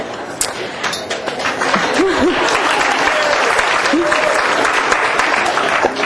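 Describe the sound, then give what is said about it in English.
Loud, sustained applause from an audience applauding the number of kilowatts a man has installed, a dense steady clatter of many hands clapping for several seconds, with a few brief voices and whoops mixed into the crowd noise. “You know, when you applauded the number of kilowatts that this guy has put in, I knew this was a...”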